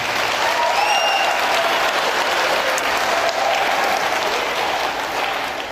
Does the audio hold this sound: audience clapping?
yes